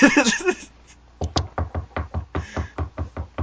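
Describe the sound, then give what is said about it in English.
A short burst of voice gives way to a steady series of about a dozen sharp knocks, evenly paced and fairly loud, from a next-door neighbor building a table or something, like hammering on wood coming through a wall. “a new building fucking table or something?”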